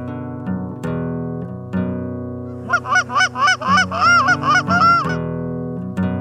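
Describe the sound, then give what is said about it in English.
A flock of snow geese honks in a busy, overlapping chorus, rising to a dense burst of repeated calls in the middle before thinning out, over a steady low drone. “Snow Goose Guide Camp”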